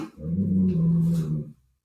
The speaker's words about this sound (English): You need to leave. Do you hear my dogs growling? Frito, Lily, down.